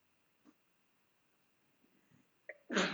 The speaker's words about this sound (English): Bless you. Bless you. Is that your pug? Wife. Oh. Sneezing. That's different.